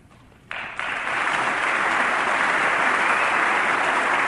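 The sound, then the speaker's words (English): Audience applause in a recorded clip of a speech: after a brief hush, clapping breaks out abruptly and swells within a second into steady, dense applause from a crowd. It stays loud and even to the end, with no voices heard over it. “You could tell it's a minority of people who are applauding.”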